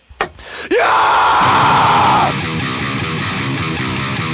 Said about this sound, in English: Give me a scream